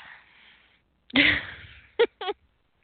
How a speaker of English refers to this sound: I sneezed, and I thought it was the polite thing to do, but I forgot.